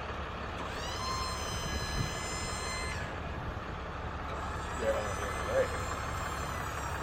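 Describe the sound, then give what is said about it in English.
A dump truck's bed raising very high: a steady diesel rumble with a high hydraulic whine that climbs in pitch for a couple of seconds, then drops away while the engine keeps droning. “Here we go. Yes. It dumps. How high do we go here?”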